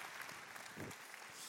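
An audience applauds steadily, a dense wash of many hands clapping at an even, moderate level with no pauses throughout.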